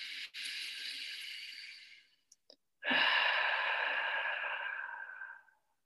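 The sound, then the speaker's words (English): A long, airy breath drawn in through the mouth fades out, and after a brief pause and a couple of soft clicks comes a fuller, louder breath out through the mouth that gradually trails away: a last deep breath in a breathing practice. Unhurried, no talking. “So if you want, you can do one last deep breath through the mouth, inhale through the mouth and exhale through the mouth, or one deep breathing through the nostrils.”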